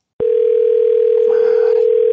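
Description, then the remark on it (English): A loud, steady ringback tone of an outgoing phone call begins abruptly and holds unbroken for about two seconds as the call waits to be answered, with faint background noise beneath it. “I feel like I keep having to mention that none of these people have my phone number. Or have this phone number saved. But maybe this person will think it's an emergency.”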